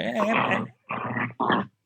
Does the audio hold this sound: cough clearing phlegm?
no